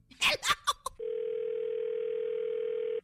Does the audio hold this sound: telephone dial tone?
yes